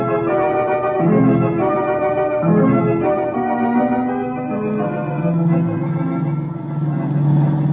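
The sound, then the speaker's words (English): A loud, steady car engine roar with its pitch rising and falling as it revs hard, sustained without a break as the car races at full throttle in a chase. “Tasso and Hopper are certainly giving their car all it can take.”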